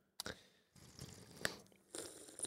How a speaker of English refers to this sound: Sorry to everyone in advance who complains about the sound, the ASMR food sounds. This one's going to be chock full of it.